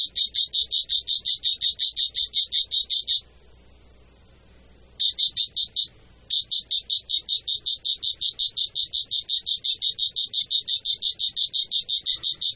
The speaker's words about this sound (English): Now, when I first heard that, I thought, oh, okay, that's a cricket. Well, it's not. That is the poison dart frog. It's native to tropical Central and South America, and it's diurnal, which means it's active during the day,